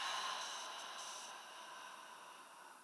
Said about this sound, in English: So we are sitting here, and what we're going to do is take a nice slow breath in through the nose, and I want you to count to four during the inhale. Breathing out through the mouth for six, counting down from six.